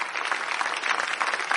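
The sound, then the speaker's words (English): A crowd claps steadily, the dense patter of many hands at a fairly loud level, with no pauses and no voices on top. “You can clap better than what you're doing.”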